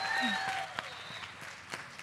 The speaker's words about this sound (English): Yes! Oh, round of applause!